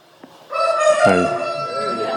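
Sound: rooster crowing sound effect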